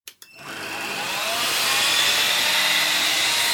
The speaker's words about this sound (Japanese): あー、ちょっとうるさいですね。掃除機です。掃除機をかけます。